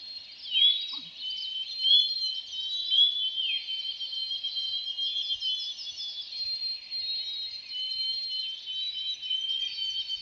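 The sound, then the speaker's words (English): A dense chorus of spring peeper frogs, tiny orange frogs, calling, with many high, shrill upslurred peeps overlapping continuously, steady and fairly loud throughout, with no voices. “They're coming from an aptly named spring peeper. It's a tiny orange frog.”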